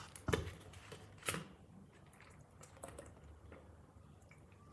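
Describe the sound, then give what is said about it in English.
Someone drinks water: a couple of sharp clicks and clunks from a bottle or glass, then soft sips and faint liquid sounds amid quiet, with no talking. “Sorry, I'm gonna drink water.”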